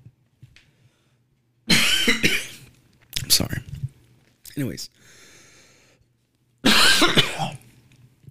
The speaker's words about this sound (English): Damn, I need a cough drop. Cough drop or something.